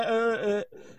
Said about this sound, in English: You know, because there was, like, because there was a burp after, you know.